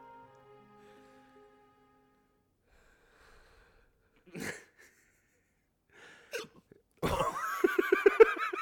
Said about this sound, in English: The hiccups, really? How do you deal with the hiccups? And you're just hiccuping.